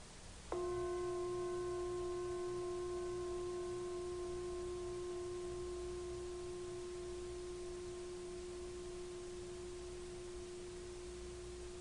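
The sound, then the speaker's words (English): A single gong strike rings out with a steady, mid-pitched hum that slowly fades over about eleven seconds; its brighter overtones die away first, with no voices. “You notice how easy it is to hear the gong and how difficult it is to stay with it.”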